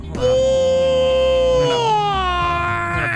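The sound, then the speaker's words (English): A theremin's steady, wavering electronic wail glides slowly downward in pitch, with whiny, crying dog howls layered over it for the full few seconds. It stays loud and unbroken throughout. “These fucking dogs think it's an air raid siren.”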